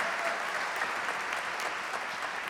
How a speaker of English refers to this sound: Quick round of applause for the nonprofit board of directors of Milwaukee Film.